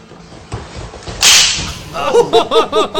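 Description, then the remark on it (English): A hard, sharp slap from a replayed video cracks once over a low background murmur, followed right away by loud excited shouts and whoops from people. “I need to watch that slap again.”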